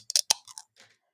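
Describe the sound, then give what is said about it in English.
A glass of homemade margarita made with hand-squeezed limes clinks in a quick cluster of bright, sharp taps, followed by a few softer, duller clicks that trail off. No one speaks. “That clinking you're hearing is a homemade margarita where I squeezed the limes myself for half of it, and then I got tired.”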